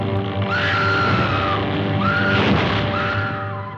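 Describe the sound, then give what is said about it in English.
A woman shrieks in a 1933 film, letting out three long, high-pitched screams in quick succession over a dense, hissy background of old film soundtrack noise. “the original Scream Queen, Faye Ray, from King Kong way back in 1933”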